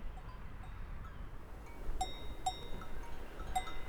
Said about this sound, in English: The sound of these cowbells dangling in the wind, it also makes you aware of all the other sounds in this atmosphere. You can hear the cars driving by. You can hear the actual sound of the wind. You can hear birds.